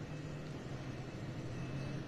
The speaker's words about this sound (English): Alright, so the fire truck's pulling away. Certainly seems like they're breaking down.